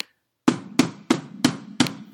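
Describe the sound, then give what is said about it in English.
A panic button being slammed five times in a steady rhythm, each hit a sharp, heavy knock with a brief low thud, with no voices. “Nah, it's me on the panic button.”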